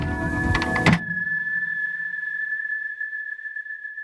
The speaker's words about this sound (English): And then, well, then it's silent. We close the door and then it's silent.